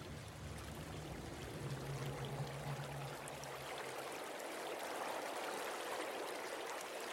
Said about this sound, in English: The river ran strong and swollen with rain. It smelt of dead fish and silt and farm rot runoff.